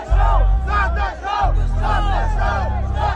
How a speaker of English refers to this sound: Also later at around 9:43, a group of fans began chanting this in the crowd.